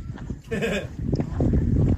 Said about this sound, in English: No problem with the sheep making the noise. Good lads.